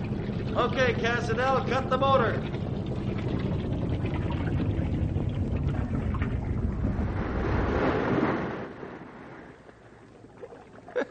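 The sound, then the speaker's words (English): A motorboat engine drones steadily and loudly as the boat travels up a river, with a few high chirps early on. Then the motor is cut and the engine stops, leaving a much quieter background. “cut the motor. Almost looks like this bank of the river was made to dock a boat on.”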